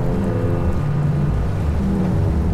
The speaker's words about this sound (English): But if you close your eyes for a moment, you can be here with me, sitting by the East River, waves lapping. There's a tugboat off in the distance. An airplane above.